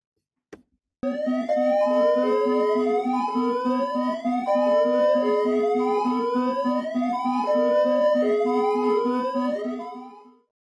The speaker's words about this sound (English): On to the live alert, Mikey. Hit us with the sirens.